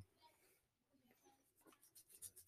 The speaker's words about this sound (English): Sorry, guys. I'm chewing a candy.